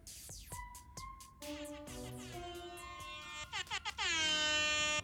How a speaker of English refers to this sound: Where's that air horn?